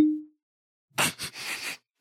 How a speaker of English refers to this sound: We're going to hear you pouring it behind your mic. But. Well, no, you don't have to because it sounds like somebody going to the bathroom, but it's Templeton Rye.